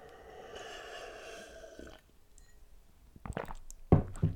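An exaggerated, drawn-out slurp of about two seconds as someone sips a drink, then a short pause followed by a few wet clicks and a louder gulping swallow. No one speaks.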